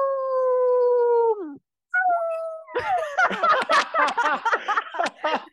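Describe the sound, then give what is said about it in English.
Loud howling from Layla, a French bulldog / Boston Terrier mix: a long, steady howl that slides downward, a short pause, another rising howl, then a run of choppy, wavering yowls and yips with no talking. “She's a French bulldog / Boston Terrier.”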